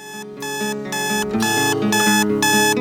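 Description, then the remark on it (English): A loud, harsh halftime clock buzzer blares in a steady rhythm of about five pulses, with no one talking. “Down low, no halftime clock buzzers.”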